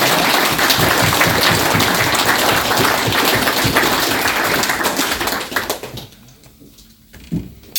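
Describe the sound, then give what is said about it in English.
A crowd applauds a group of team players in a dense, steady wash of clapping that holds for about five seconds, then thins out and fades to a few scattered claps near the end. “So if you can just give them a round of applause.”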